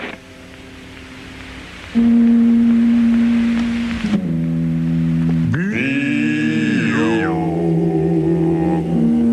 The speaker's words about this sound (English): Oh, here comes that boat again.